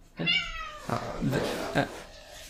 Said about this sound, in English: We gotta keep those meows in, man. Yeah, we'll keep them in.